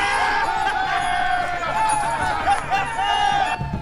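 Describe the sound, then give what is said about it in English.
A large army crowd cheers and shouts together, a steady roar of many voices with rising whoops and calls throughout, easing slightly near the end. “What are they cheering about over there?”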